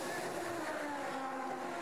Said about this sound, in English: It'll be good to have a listen to this car as it goes. All right. We'll turn the effect right up then.